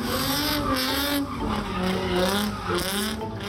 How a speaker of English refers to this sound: And then within maybe 15 minutes, there were hundreds of people standing around watching cars careening around, burning rubber, burning their brake pads, really just letting loose in this neighborhood.